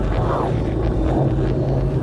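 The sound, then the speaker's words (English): A heartbeat recorded from inside a person's body, heard as a steady, muffled low rumble with soft rhythmic whooshing pulses rising and fading about every second, with no voices. “A heartbeat.”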